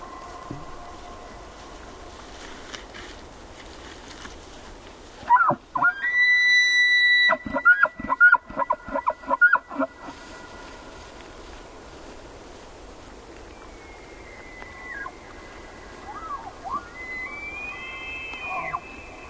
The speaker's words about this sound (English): Jonathan Storm recorded these two male elk. Their competing testosterone-driven calls for female companions echo across a high meadow on an autumn evening in Yellowstone National Park.